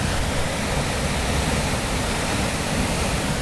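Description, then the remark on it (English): A steady, powerful roar of a large waterfall, about 120 feet high, fills the scene, a dense, unbroken rush of crashing water that stays loud and constant throughout with no voices. “I bet in the high water that all swirls down there. 120 feet.”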